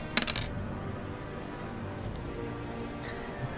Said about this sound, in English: Can you give me a D4 roll, please? What? Why? Yes. You are number one on this D4 roll.